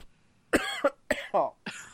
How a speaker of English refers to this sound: What's going on? I haven't been doing anything that should be causing this cough.